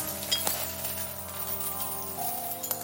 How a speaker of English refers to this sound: Tad's eyes shifted towards the vase, and he almost passed out again at the sight of hundreds of gold coins pouring out of it.